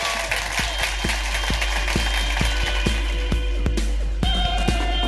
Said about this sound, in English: Will you please give a massive round of applause for amazing Sooz Kempner?